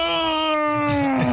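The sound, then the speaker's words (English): A loud, drawn-out voiced yawn: one sustained, whiny tone that slowly slides downward in pitch over about a second and a half, with no talking. “If you're going to yawn, make the noise.”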